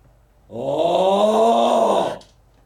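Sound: person imitating loud snoring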